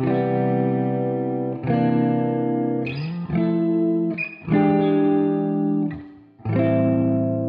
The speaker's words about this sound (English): reverb-soaked vocals floating above a single electric guitar playing rich, beautiful seventh chords.